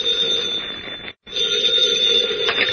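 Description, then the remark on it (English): A telephone rings in Editor Perry White's hotel room in the state capitol, in an Adventures of Superman radio drama. It rings loudly in two long, unbroken bursts split by a brief pause, a bright, high-pitched metallic jangle with no voices over it. “In his hotel room in the state capitol, Editor Perry White, mayor of Metropolis, has his hat and coat on and is about to leave the room when the phone rings.”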